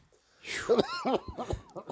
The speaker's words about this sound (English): So there's that cough that we all love.